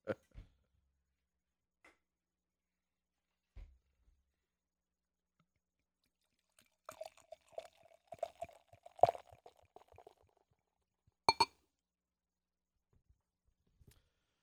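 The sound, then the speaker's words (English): A barrel-aged stout with robust coffee notes pours into a glass for a few seconds, gurgling and fizzing, followed by a sharp clink. Scattered quiet knocks come before, and no one speaks. “This poured the same.”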